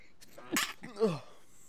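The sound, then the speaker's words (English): A single sneeze: a sharp, hissing burst followed by a short voiced 'choo'-like tail, fairly soft overall, with no talking around it. “And I'm going to sneeze.”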